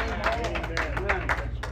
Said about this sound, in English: And of course, you know, we're clapping our hands, but praise God.